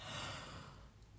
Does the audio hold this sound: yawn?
yes